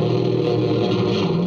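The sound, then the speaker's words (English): A heavily distorted electric guitar, played in one take on a lead guitar track, growls in a sustained, engine-like drone, imitating a revving motorcycle, its pitch sliding upward near the end. Loud, with no voices. “in his one take on the lead guitar track, stopped it and said, oh, you want a motorcycle, huh?”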